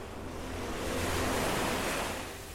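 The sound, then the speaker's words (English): Waves wash and break against the rocks of the shore of Athens, Greece, about a half-hour drive from the city center, a broad hissing surge that swells in the middle and eases slightly toward the end, steady with no voices. “I'm at the shore of Athens. Not at the beach, but at the rocks of the shore.”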